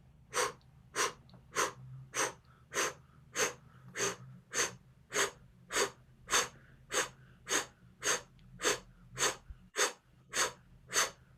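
A steady series of sharp, forceful breaths pushed out through the mouth from the diaphragm during a breathing exercise, about fifteen quick bursts at an even, brisk rhythm, clear with low background hum and no talking.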